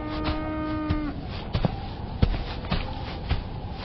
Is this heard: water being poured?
no